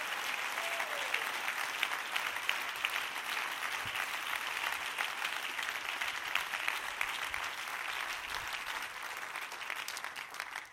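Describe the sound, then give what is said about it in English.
A large crowd in a house of worship claps steadily and continuously, giving the Lord a hand clap, a dense wash of many hands applauding at once, loud and sustained with no voices standing out. “Give the Lord a hand clap, everybody in the house.”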